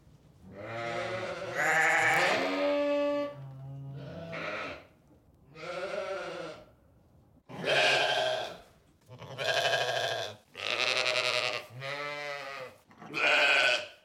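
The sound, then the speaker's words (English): A sheep bleats repeatedly, about eight wavering, nasal calls in a loose rhythm with short pauses between them, loud with no other sounds. “Yeah, it's a sheep.”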